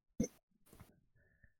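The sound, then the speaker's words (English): Someone makes an exaggerated, raspy throat-clearing noise mimicking the Welsh pronunciation of a city name: a sharp guttural burst, then a rougher hawking rasp trailing off into a faint hum. “or, you have to clear your throat for towards the end of it.”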